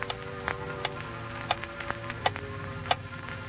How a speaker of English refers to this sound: It was so quiet, I could hear the clock ticking.